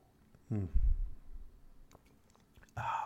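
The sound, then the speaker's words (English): A sip of a bitter drink, with wet mouth and swallowing noises, a few soft clicks, then a brief voiced sigh at the end. No words are spoken. “So let's enjoy our sip today, my friend.”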